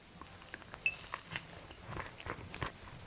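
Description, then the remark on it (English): Quiet chewing of thick, crumbly beetroot bread full of seeds: a run of soft, irregular crunches and moist mouth clicks, with no one talking. “There is the sound of me chewing here.”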